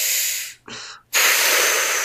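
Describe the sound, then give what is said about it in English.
A long, airy breath is drawn in, followed after a brief pause by a strong, hissing exhale that stays loud to the end, sending up smoke that covers a pair of glowing eyes staring from shadow by a fire. No one speaks. “You hear an inhale and an exhale, and you see smoke rise up and cover the eyes.”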